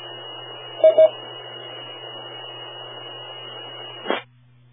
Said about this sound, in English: right as you said, wiggling cables, I could hear a little bit of static fluctuation in the background, but it definitely didn't mess with your audio.